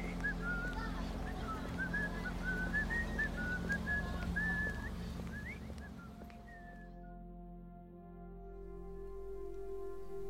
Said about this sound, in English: This is a man whistling in the street.